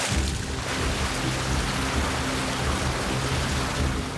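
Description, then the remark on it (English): A steady, dense roar of rushing water fills the whole clip, loud and unbroken, with a deep churning rumble underneath and a hissy spray on top. No voices. “The sound of rushing water grew louder.”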